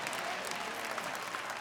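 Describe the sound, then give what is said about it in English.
An audience claps hands in a dense, continuous burst of applause, many overlapping claps forming a steady, bright wash of sound with no clear individual beats. “Clap your hands and say, I'm going to try again.”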